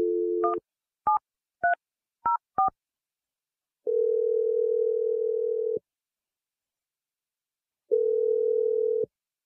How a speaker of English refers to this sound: So I'm going to dial the phone number right now.